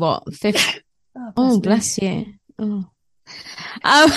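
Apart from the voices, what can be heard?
sneeze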